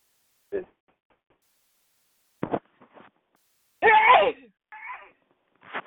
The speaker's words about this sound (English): I gotta sneeze.